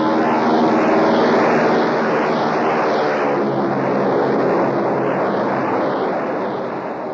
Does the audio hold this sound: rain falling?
no